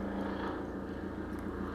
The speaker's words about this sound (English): I'm sorry, there's a helicopter going over the house. Thank you, God. Thank you, Jesus. I'll just wait for it to pass. Intentionally wait for the helicopter to pass.